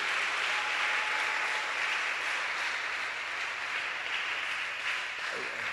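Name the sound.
audience clapping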